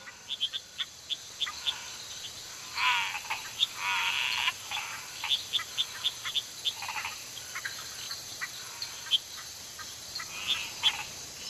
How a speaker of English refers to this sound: But this cacophony of sound at night is absolutely awe-inspiring. Are they all frogs,